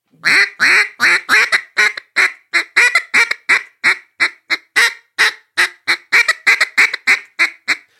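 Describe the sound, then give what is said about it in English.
A duck call blown in a rapid, rhythmic series of raspy mallard hen gack notes, loud, roughly two dozen short clipped quacks with tiny gaps, no talking. “A lot of guys in the timber do it on those Mondo or cut down calls. Gack, gack.”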